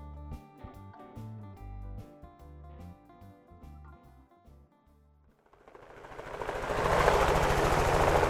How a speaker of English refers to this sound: A helicopter flies above the snowy open hills in the Grovant Wilderness in Teton County.